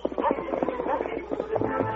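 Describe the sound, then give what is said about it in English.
A horse's hooves clip-clop at an easy walking gait as its rider heads north, leading a second horse, in a steady, even rhythm, moderately loud. A dense, muffled layer of other sound runs beneath the hoofbeats. “Leading Bill Salter's horse with a dead man tied across the saddle, the Lone Ranger rode north at an easy gait.”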